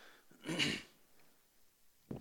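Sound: cough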